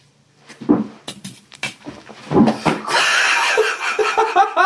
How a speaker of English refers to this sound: Garage. Garage. She will open the door like that. Open like that. Slam it. This is what she did.